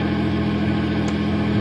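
A car engine hums steadily as the vehicle drives along, a constant rumble with road noise and no change in pace throughout the short stretch.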